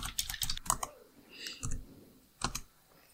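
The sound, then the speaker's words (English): Crisp typing on a computer keyboard: a quick flurry of key clicks, then a few scattered keystrokes separated by short pauses, with no voices. “My keyboard fell asleep.”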